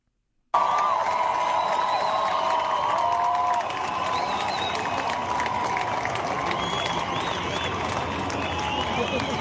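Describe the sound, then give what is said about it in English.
A large crowd roars and shouts at a rally in France in support of Hamas, held in reaction to Macron declaring such public support illegal; a dense, steady wash of many voices with some raised cries above it, easing slightly in loudness partway through. “This is now they are all rallying in order for it.”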